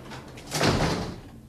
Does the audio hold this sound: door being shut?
yes